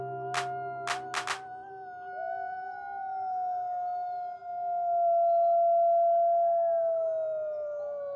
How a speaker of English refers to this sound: Only 1 hour from the largest city in the United States, wolf howls drift across the sky. A rare sound in the lower 48 states, where wolves were nearly eradicated.